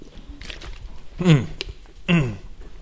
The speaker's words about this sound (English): Excuse me. Extra big gulp there.